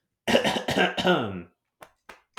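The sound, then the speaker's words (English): A long, rough, voiced throat clearing, followed by three short, sharp coughs spaced evenly apart, each fading quickly into silence. “But yeah, wow, I'm sorry I got a cough in my throat.”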